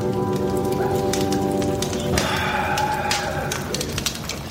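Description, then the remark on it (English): A cowboy campfire under the stars, shared by Sparks Nevada and Croach the Tracker, crackles steadily with dense, sharp pops and snaps throughout, over a low sustained humming tone that fades partway through; no one speaks. “Sparks, Nevada, and Croach the Tracker, and they're having themselves a regular cowboy campfire and waxing on all things under the stars.”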